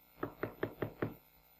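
Five quick, evenly spaced knocks on a door, sharp, rapping out a steady rhythm with no one speaking.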